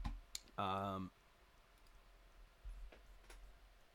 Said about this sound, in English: Okay. And now the keyboard works.